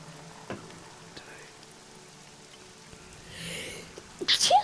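A single sharp, loud sneeze bursts out near the end, after several seconds of quiet background hiss with a brief soft rush of noise just before it.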